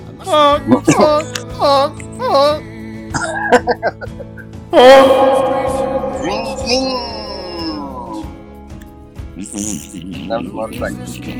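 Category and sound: vocal imitation, voice imitating a fart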